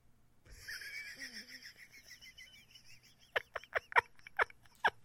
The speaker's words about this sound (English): Crickets. Do we have crickets? Of course we have crickets. I just had to find them.